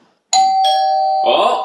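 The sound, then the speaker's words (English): A doorbell rings as someone arrives at the door, two bright chime strikes, a ding-dong whose clear ringing tones sustain and overlap. A burst of voices joins as the chime fades. “Who's at the door?”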